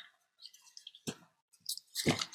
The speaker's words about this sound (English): Speaking of water, let me get me a sip.